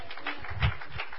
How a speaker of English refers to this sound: If that's true, clap your hand to Jesus.